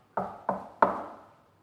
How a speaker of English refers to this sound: he says, listen, I stand at the door and knock.